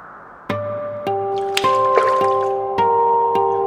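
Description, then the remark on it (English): Half a dozen resonant water drips fall at a slow, uneven pace in a hot spring, each leaving a ringing tone, with a brief soft slosh of water in the middle. “Winland had immersed his neck in the water, his head propped upon stone.”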